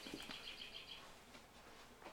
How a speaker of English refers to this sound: I'm going to shut the door. Hey, shut that door, man. So we can shut the birds out a little bit.